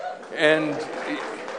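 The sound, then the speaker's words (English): An audience at a camp gathering whooping "woo-woo" in loud, rising voiced cheers, with a steady wash of crowd noise and scattered clapping underneath for under two seconds. “And everybody that's woo-wooing and clapping, we'll see you next summer on that trip.”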